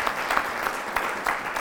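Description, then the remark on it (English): A church audience claps for God together in a steady, dense burst of applause, many hands overlapping with a few sharper claps standing out, sustained and fairly loud throughout. “Give God a hand clap.”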